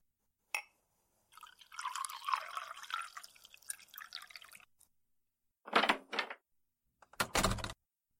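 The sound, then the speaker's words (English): A sharp click, then water pours steadily into a cup for about three seconds, followed by two short, louder splashy bursts. No one speaks. “please bring him a cup of water.”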